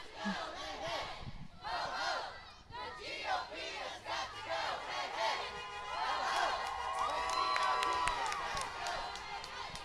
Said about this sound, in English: Now we got … leading the crowd.